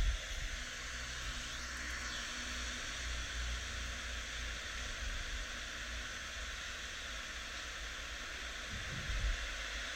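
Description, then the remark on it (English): A steady, continuous rush of stream water flowing over stones and around big rocks, a broad hissing wash that holds an even level throughout, with no voices and no distinct separate events. “You hear the leaves rustling and the water running over stones and around big rocks.”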